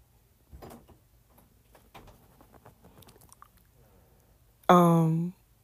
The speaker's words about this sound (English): Close my door a little bit